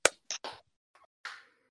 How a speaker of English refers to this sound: Let's all clap so that it can sync up. Okay, you ready? Yeah. 3, 2, 1.